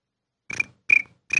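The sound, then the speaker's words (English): A person imitates summer cricket chirping with their voice: three shrill, buzzing chirps at a steady rhythm, fairly loud, with silence between them. “How do you make a cricket summer sound?”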